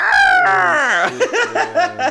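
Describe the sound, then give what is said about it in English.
A person's voice mimics a seagull, starting with a long, loud, falling squawk and breaking into a quick run of four or five short, yelping cries, alone. “And you can even dress those keys up to look like fucking like seagulls or birds. Put little sound makers on them.”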